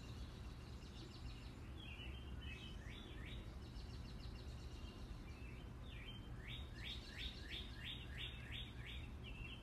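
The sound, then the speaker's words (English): Birds sing a repeated series of bright, rising chirps at 8 p.m. on a Saturday in June, over a steady low hum of background noise, the calls fairly clear, with no voices present. “And these birds don't seem to know that it's nighttime. This is what they do out here.”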